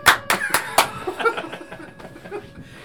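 A short burst of clapping by two people: four sharp, loud claps in quick succession, followed by softer, scattered claps that fade out under a bit of light laughter.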